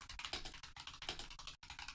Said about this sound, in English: I have a loud keyboard. I'm sorry. No, I love it. It sounds like you're typing on potato chips.